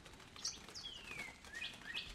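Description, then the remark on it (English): Thin, high-pitched cheeps from chipping sparrow fledglings, a handful of short calls and one drawn-out descending note, fairly soft over a low background hiss with no voices. “Those, as far as I can figure, are chipping sparrows, mainly seed eaters.”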